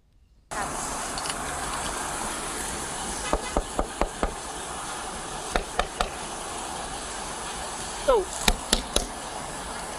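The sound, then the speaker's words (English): A man knocks hard on a door in short bursts of three or four sharp raps, separated by pauses, over a steady background hiss with no talking. “I'll tell you what, he was knocking pretty hard.”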